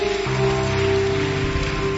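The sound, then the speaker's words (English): An audience applauds, a dense, steady wash of many hands clapping together for about two seconds, with sustained musical tones humming beneath the clapping. “Would you want to clap for them, please?”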